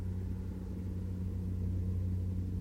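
A car with its door left open idles with a steady, low engine rumble and hum that holds at a constant level throughout, with no voices and no other distinct sounds.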